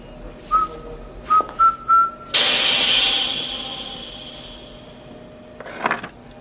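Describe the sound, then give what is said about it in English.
Someone whistles the first notes of Rule, Britannia, arming a spy gadget, then a loud burst of hissing stun gas sprays out and slowly fades, followed by a faint rustle. The stun gas has an effective range of about 5 feet. “Now, whistle the first bars of Rubritannia.”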